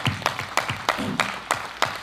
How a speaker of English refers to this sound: Amen? Amen. Amen. Let's give the Lord a big hand clapping here today.